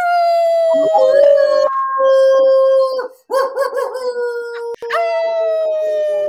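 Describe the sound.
Several people howl together in imitation of wolves, long sustained wavering cries that overlap and rise and fall loudly, with a brief pause in the middle before the howling resumes.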